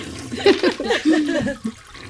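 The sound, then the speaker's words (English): A toilet flushes with a rushing, gurgling swirl of water lasting about two seconds, fairly loud, with no talking over it. “Just Justin, add, like, a toilet flushing sound effect right now.”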